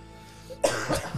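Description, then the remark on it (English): A sudden cough: a sharp first burst followed by a couple of rougher, throaty hacks in quick succession, with no talking, from a person who has been coughing a lot that day. “And on that cough, I want to get on my next apology, and I want to go ahead and get ahead of something.”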